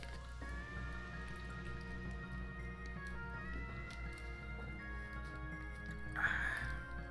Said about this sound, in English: Another sip of water.